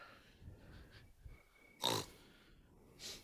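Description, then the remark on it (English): A person makes a short, loud snorting oink in imitation of a pig, followed about a second later by a softer, breathier snort against a quiet background. “Yeah, that's not a squeal. That's an oink.”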